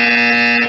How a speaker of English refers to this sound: Yeah, I got a bell for you. Here it is right here.